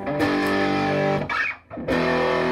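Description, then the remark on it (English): Thick, saturated electric guitar chords ring out loud and sustained through an Orange amp, the guitar plugged directly into the amp without a distortion pedal, with a brief choked gap before the heavy distorted tone swells back in. “I mean, I don't need a distortion pedal. Listen to that.”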